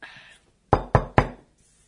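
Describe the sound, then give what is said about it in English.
Three firm, evenly spaced, resonant knocks on a motel door, each ringing briefly before the next, with only faint background noise around them. “Rat, rat, rat. On your motel door.”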